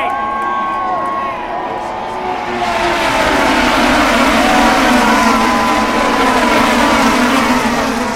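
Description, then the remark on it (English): A pack of race cars roars past together at the start of a race under the green flag, heading into the first turn, engine whine rising and sweeping in pitch as they pass, loud and sustained, with a crowd noise wash underneath. “Cars by. No action on the first turn.”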